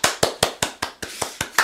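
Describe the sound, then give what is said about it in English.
About nine sharp hand claps in a steady, quick rhythm, fairly loud, with no voices, given as virtual applause for guest Eric Bloom. It sounds like one person clapping rather than a crowd. “Everybody, please give your cyber virtual applause to Eric Bloom.”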